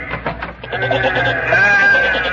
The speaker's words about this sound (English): Horace has come back again, and he's brought all his little sheep friends with him.